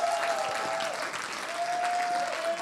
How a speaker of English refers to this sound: Now we give Jesus a clap offering and a shout in the presence of the mighty God.